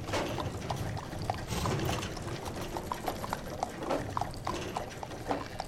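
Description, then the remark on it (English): Horse hooves clip-clop steadily in a loose, uneven rhythm, with a soft background wash and no voices, as the horses are brought around front. “Then Jostra goes back out to bring the horses around front.”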